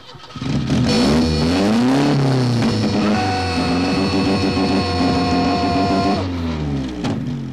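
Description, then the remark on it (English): A car engine in a John Hughes film scene turns over and catches, then revs loudly with rising and falling pitch, held steady for several seconds before cutting off abruptly near the end. “And then he starts the car, and then he stops the car, and yeah.”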